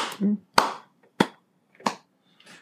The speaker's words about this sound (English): Since you over here clapping and shit.